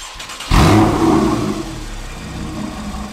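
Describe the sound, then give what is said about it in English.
A 911's engine fitted with a Soul Performance aftermarket exhaust, valves closed, cranks and fires up about half a second in, a loud deep exhaust bark that settles into a steady, rumbling idle. No one speaks. “Now let's listen to the Soul Performance exhaust on startup, first with the valves closed.”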